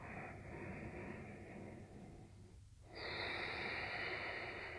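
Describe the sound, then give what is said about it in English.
Steady breathing through the nostrils with the mouth closed and a constricted, hissing quality at the back of the throat on both inhales and exhales: one long breath, a brief pause, then a louder, rougher breath drawn in. No talking. “But breathing instead through your nostrils.”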